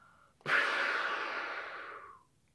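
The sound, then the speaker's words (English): As part of a breathing exercise, a person blows out one long, forceful breath through the mouth, imitating a whale spouting from its blowhole; the breathy rush starts abruptly, lasts nearly two seconds, then tapers off. “Like we are whales blowing out.”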